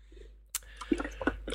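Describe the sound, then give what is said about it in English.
Wet gulping and sloshing as someone takes a drink of water, with a few soft clicks and squishy swallowing sounds in quick succession, no talking. “What are you sloshing? Well, I'm having a drink. Okay. Yeah, it's okay, it's only water.”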